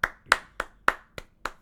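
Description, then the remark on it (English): Six sharp handclaps in a steady rhythm, about three per second, crisp and fairly loud with brief ringing after each one and no voices. “Clap it up.”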